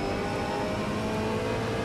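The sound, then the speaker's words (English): A race car engine drones steadily from inside the cockpit of a car with a digital dash and a sequential shifter, a loud, constant buzzing roar with a fairly even pitch throughout and no voices. “Give us some sound here. There we go. Check out the inside of this car, by the way, that digital dash, that sequential shifter.”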